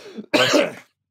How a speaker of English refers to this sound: Big cough in your ears there